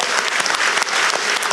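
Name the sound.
audience applauding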